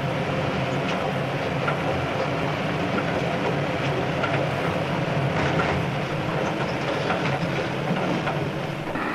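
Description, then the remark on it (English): A railway wagon running at speed along the track, its side-to-side movement measured by railway researchers: a loud, steady rumbling roar, with faint rhythmic clicks of wheels over rail joints throughout and no voices. “Such a wagon, at speed, may lash dangerously from side to side.”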